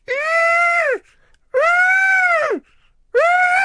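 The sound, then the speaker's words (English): A human voice imitates a screaming moth with three loud, drawn-out wailing shrieks, each about a second long and dropping in pitch at the end, separated by brief silent pauses. “Have you ever heard a moth scream?”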